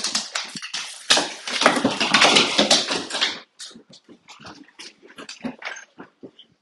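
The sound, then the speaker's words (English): Noisy scuffling and rustling as a young German Shepherd dog, nearly one year old, tussles with a boy, with the dog's excited vocalizations, then the commotion settles into a series of short, intermittent whimpers and yips. “because my dog and my son are having a little scuffle here, and I don't know who's gonna win the scuffle.”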